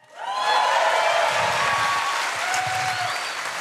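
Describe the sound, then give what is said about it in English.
A live audience breaks into sustained applause, many hands clapping densely and steadily, with a few faint whoops mixed in before it begins to ease off. “It's kind of you, but nobody claps for investigative journalists.”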